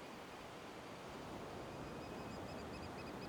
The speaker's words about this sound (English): And as you listen to the waves crashing, the waves coming in, and the waves rushing out, allow the fear to dissipate.